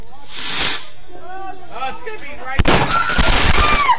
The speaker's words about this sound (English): Now, for the greatest freaking fireworks video ever. Run!